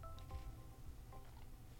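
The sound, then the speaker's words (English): Quiet gulping of water as a person drinks to wash down food: a few soft wet swallows spaced across a couple of seconds, with faint low rumbling underneath and no talking. “Oh, you're about to hear a drink of water, too.”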